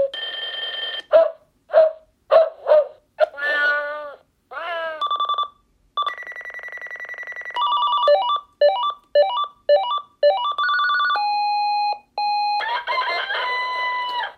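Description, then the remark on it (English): An alarm clock's electronic rooster crow alarm sound plays loudly at volume 8, the loudest of its eight levels, a run of synthetic cock-a-doodle-doo calls and clucking bursts mixed with beeping and steady electronic tones, no one speaking. “Okay, so there's the rooster again.”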